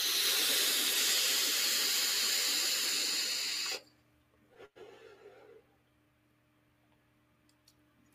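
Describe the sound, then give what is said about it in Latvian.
A vape coil on a mesh RDA fires, set to 75, with a loud, steady sizzling hiss for nearly four seconds, then cuts off abruptly, leaving a single soft click and near silence. “Vēl var tvaicēt. Nebūs mans, jo karstāks tvaiks paliek.”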